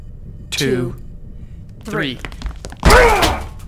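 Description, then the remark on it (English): People trying to break a door down: a body slams into the door with a dull, heavy thunk near the end, surrounded by three short, strained vocal cries and groans of pain. “We're breaking this door down.”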